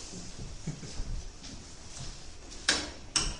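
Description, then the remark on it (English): A door in a tower with a green floor is shut and locked with a key: two sharp metallic clunks half a second apart near the end, following a stretch of quiet shuffling and handling noise. “Right, well, I just locked off the door, and now to do that, I have to put a key in.”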